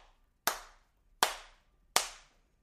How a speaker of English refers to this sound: From behind him, he can hear clapping.